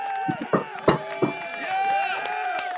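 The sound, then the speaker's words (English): A cheering crowd sound effect played from a small gadget after a prayer on a broadcast: overlapping excited shouts and whoops, a few sharp clap-like bursts early on, and a high whistle partway through, all fairly loud and lasting just under three seconds. “The crowd's going wild, brother.”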